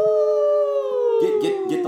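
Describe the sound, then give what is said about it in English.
A person lets out one long, loud wolf-like howl, a steady tone that slowly sinks in pitch, imitating a werewolf, while other voices break in over the final second. “And I'm starting to feel like I need to howl.”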